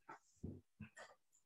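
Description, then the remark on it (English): A puppy named Penelope Van Horn, who has just woken up, whimpers and yips in about five short, uneven bursts, some breathy and low, others higher and whiny, all quiet with no talking. “there's a puppy that woke up.”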